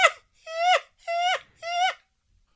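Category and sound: vocal imitation, voice imitating a seagull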